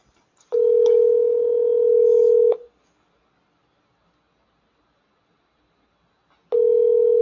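A telephone line tone as a call comes in and connects: a steady electronic hum lasting about two seconds, a long pause, then the tone starting again. Clear, with no voices.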